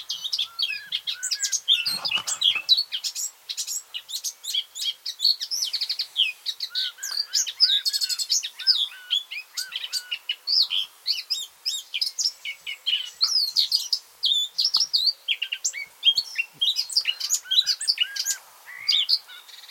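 A blackcap sings a rich, rapid warbling song, with fast bright phrases tumbling one after another, steady and continuous with only brief pauses. No voices are heard.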